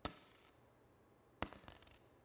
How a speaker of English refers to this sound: And so she just drops in her two coins.